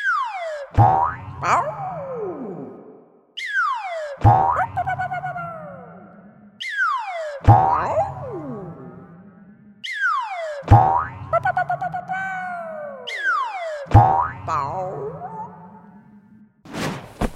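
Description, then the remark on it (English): A springy cartoon boing for Captain Blue bouncing high on the dwarf planet Pluto in a children's story repeats five times at steady intervals, each one a sharp twang that warbles and slides in pitch before ringing out, with a short bright hit at the very end. “Ooh, look how high Blue is bouncing.”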